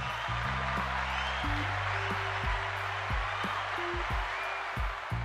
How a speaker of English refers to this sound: Let me give you guys another applause because you guys are here.